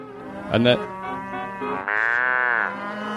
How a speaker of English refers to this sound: I thought we had cow sounds, but I'm not sure we do necessarily